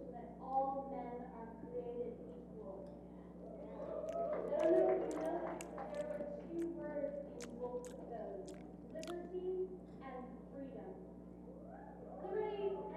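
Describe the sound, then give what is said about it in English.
A crowd cheers at a political rally, many voices blending into a steady, moderate roar with scattered sharp claps and whoops rising and falling over about thirteen seconds. “A little cheer for freedom there.”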